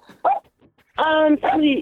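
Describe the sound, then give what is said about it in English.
A dog named Denny barks: one short bark, then two longer, drawn-out barks that drop in pitch at the end, loud and clear with little else around them. “What's he barking at?”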